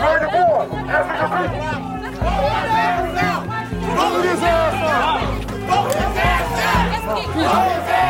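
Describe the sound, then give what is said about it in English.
A large crowd shouts angrily at the mayor as he turns to go back into a building, trying to stop him. Many overlapping voices yell at once in a dense, continuous roar with sharp rising cries, steady and loud throughout. “So he starts to go back into the building, and the crowd gets angry.”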